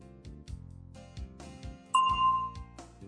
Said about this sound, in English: Listen for the bell, then speak.